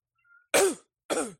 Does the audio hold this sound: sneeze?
yes